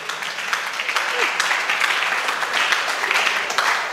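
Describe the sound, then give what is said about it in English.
A crowd claps steadily throughout, a dense, even patter of many hands, with faint voices mixed in beneath the applause. “You see, they can't clap.”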